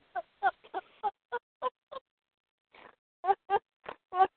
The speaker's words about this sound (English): Oh, God, I'm over here snorting like a pig.